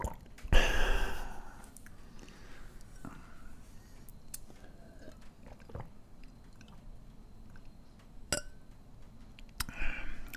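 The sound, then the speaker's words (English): Quiet drinking of half-filtered water from a glass: a brief splashy burst at the start, then soft gulps, wet mouth sounds and a few light glass clinks with pauses between. “halfway with water that's filtered”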